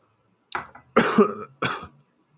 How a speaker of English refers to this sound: Are you smoking marijuana? No, I'm not. I'm drinking beer and coughing.